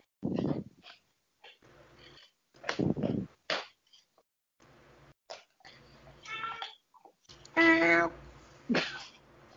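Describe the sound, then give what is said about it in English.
A cat makes a series of loud noises: short rough bursts with pauses between, then a couple of drawn-out, strained yowling cries near the end. “Yeah, we hear that too, but the cat is louder.”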